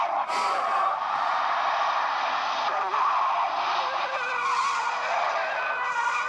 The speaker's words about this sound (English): The whole budget was right there, right? With all the car crashes. Oh my God, oh my God. How'd they have a budget for such a car crash?